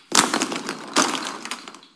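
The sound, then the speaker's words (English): A stacked tower is knocked down, with a sharp crash followed by a second burst of clattering as the pieces tumble and scatter, then a fading rattle. “You knocked the first one down? Do I get to knock this one down?”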